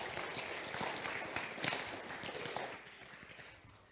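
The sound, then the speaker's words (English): An audience at a Sunday church service applauds steadily to welcome a visiting preacher, a dense wash of many hands clapping at a fairly even level that gradually tapers off toward the end. “Please hold your applause until the end.”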